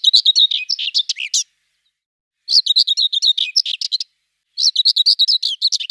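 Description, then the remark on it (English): Three short bursts of scratchy, rapid song from a common whitethroat, each lasting about a second and a half with brief silent gaps between, clear with no talking. “So this is literally just called the common white throat.”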